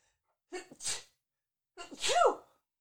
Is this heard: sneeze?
yes